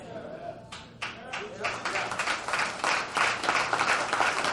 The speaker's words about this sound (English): Oh, listen to the hand claps.